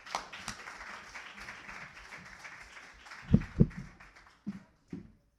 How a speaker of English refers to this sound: Give him a round of applause, guys.